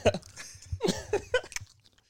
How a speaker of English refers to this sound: He's just chomping in the mic, bro. Just chomping in the mic, bro. Yeah, everything, bro.